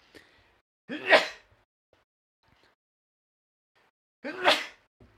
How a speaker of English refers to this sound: I'm sneezing on the air, everything is great.